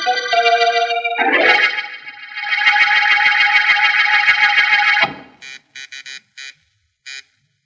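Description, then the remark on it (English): An electric office buzzer sounds in one long, harsh sustained drone, then is tapped out in a rhythmic pattern of about six short, sharp buzzes, following a brief swell of music. “And if it's all the same to you, please finish that little rhythm pattern you played on the buzzer just now.”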